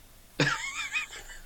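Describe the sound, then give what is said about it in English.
A single short, gruff throat clearing bursts out, a rough rasp that trails off into a brief voiced rumble within about a second, with no talking around it. “Just sounds like you're clearing your throat.”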